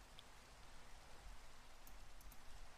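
Steady rain falls in a continuous, even hiss with no pauses, a dense wash of fine patter broken only by a few faint brighter drips.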